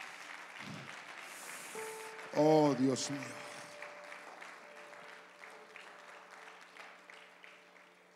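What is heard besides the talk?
audience applause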